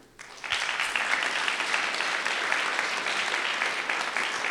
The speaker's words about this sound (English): Well, on that note, Peter Singer, thank you very much indeed. I think we put our hands together for a big round of applause for Peter. Please also extend your applause to our respondent,